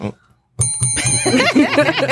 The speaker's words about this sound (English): Hit the bell, please.